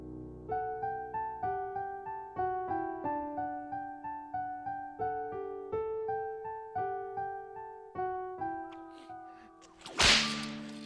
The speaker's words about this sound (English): Hours later, Mara laid the last lash against Trevor Conroy's body. Putting the whip aside, she approached him and released the manacles and chains.